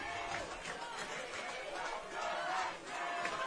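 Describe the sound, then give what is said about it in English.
A football crowd cheers and roars steadily for Academy Park, a dense wash of many voices with shouts rising and swelling throughout, getting louder toward the end. “The crowd starts to come alive for Academy Park.”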